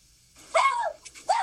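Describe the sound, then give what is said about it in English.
A dog barks twice, the first a longer drawn-out bark and the second shorter after a brief pause, moderately loud with no talking. “Oh, my dog. There's your dog has a question.”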